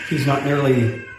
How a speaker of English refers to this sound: We have a child screaming in the background. I hope that isn't too disruptive.